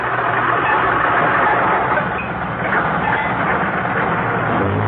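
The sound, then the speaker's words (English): The rough, sputtering old engine of Jack Benny's car runs steadily and loudly, with a dense rumbling drone and no voices over it. “That's what my car thinks of you, Alan.”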